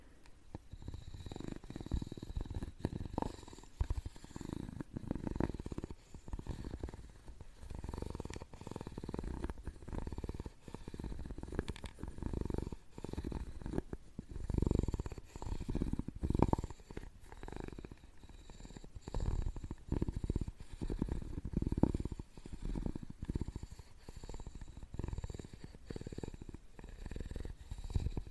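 A cat purrs steadily, a deep, rumbling, continuous vibration with rhythmic swells as it breathes in and out, with no talking.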